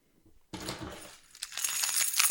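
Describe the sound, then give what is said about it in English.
A bunch of keys jangles, a bright metallic jingle that starts abruptly, eases briefly, then grows louder and busier toward the end, with no voices. “Oh my God, he's just become a jumble of keys.”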